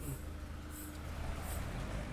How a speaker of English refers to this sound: I got a car coming.